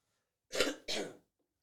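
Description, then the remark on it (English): Two quick, harsh coughs in close succession, moderately loud, with a rough throat-clearing quality and silence around them. “We also have a mute button, so when I cough...”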